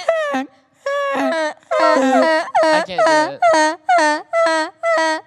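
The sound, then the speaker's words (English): A person's voice imitates a wild goose, letting out about ten loud, nasal honks in a quick, uneven series, each a short blaring burst with brief gaps between. “Wild goose.”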